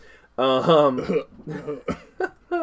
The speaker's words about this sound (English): What's wrong? Just clear my throat.